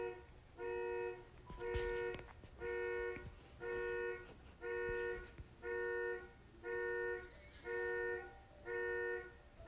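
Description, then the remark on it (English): A car horn honks over and over in a steady, evenly spaced rhythm, about nine short blasts, fairly loud, with faint background noise and no one talking. “I'm sorry for the honking sound.”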